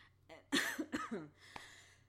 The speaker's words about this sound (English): Excuse me while I cough up a lung.